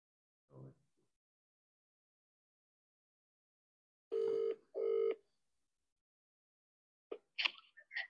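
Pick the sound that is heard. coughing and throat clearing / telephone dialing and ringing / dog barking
telephone dialing and ringing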